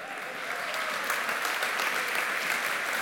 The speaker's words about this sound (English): I told them, they told me if I keep giving them applause, they'll keep praying for me before. It's a good trade.